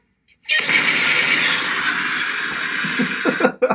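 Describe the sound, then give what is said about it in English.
Explosions in a version of a song being played: a loud, roaring explosion bursts in abruptly and rumbles on steadily for about three seconds as a dense wall of noise, then cuts off with a few short choppy bursts at the end. “I didn't realize that this version had explosions.”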